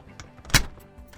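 A single solid thunk of a heavy door, the second of a double set of doors into a recording booth, being shut: one sharp impact with a brief low thud, set against quiet room tone with faint rustling before and after.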